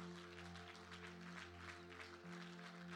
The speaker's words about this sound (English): And one more time before you're seated, would you just put your hands together? Come on, would you just put your hands together? Clap them like thunder.